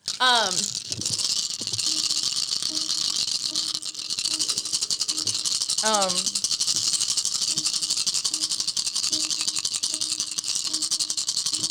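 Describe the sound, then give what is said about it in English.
Dice rattle continuously for the whole stretch, a steady bright clattering without pause, with a couple of brief voices cutting in near the start and again midway. “You said rolling dice.”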